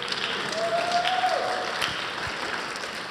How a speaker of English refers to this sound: you can clap, it'll make me feel better.